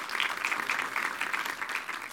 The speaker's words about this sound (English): Applause is great.